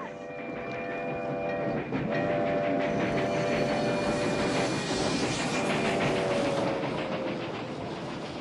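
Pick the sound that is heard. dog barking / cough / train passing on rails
train passing on rails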